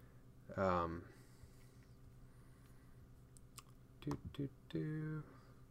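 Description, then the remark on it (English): Scattered soft clicks of typing on a computer keyboard, fairly quiet and irregular, with a few short murmured vocal sounds breaking in near the start and end. “This is a lot of typing to do on the fly.”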